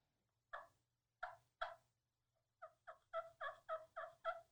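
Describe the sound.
Soft hen turkey tree-calling clucks made on a pot call, as a hen does in the morning: three spaced, quiet notes, then a quick run of about eight muffled yelps in a steady rhythm, with no talking.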